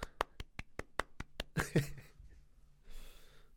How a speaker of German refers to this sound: Ein großer Applaus.